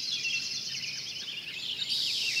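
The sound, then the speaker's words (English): A dense summer dawn chorus of many birds singing at first light in July, overlapping high chirps and trills forming a continuous bright wash, steady and moderately loud with no voices. “In July, you might have heard this dawn song. Many birds singing at first light.”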